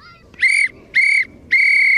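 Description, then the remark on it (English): A referee's whistle gives three loud, shrill blasts in quick succession, the last held slightly longer, marking the end of an under-8 youth football match between Ratote and Ballymun, over a faint murmur of outdoor background noise. “At the final whistle, I asked them, did they win?”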